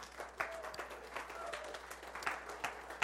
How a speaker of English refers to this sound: is that you can clap for him. That's great.